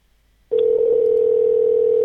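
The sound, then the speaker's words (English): A steady, loud telephone dial tone, heard while placing a phone call, starts abruptly after half a second of near silence and holds unbroken to the end, with no voices present. “Yeah, we're going to call some more racists.”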